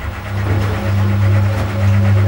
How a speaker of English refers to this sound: This is an old-school top-loading washing machine struggling through yet another load.